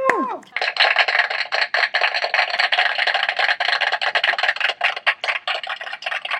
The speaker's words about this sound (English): That's either applause or a lot of people tap dancing at once. Maybe that's how they record those, just go through really overly complicated means to record something basic. We'll hire 100 tap dancers for this applause sound effect.